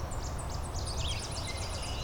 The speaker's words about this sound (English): Tennessee warbler is still going on.